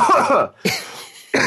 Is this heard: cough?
yes